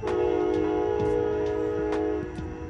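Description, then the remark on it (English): A train horn blows in one long, steady blast, loud and sustained for nearly three seconds, with the rumble and clatter of the train beneath it and no voices. “The train telling me goodbye.”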